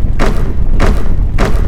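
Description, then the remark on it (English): Heavy footsteps of an earthbender rushing forward slam onto a platform, shaking it: three loud, evenly spaced thuds over a steady low rumble, with no voices. “Heavy footsteps slamming into the platform below. You can feel the platform rumble as he rushes towards you.”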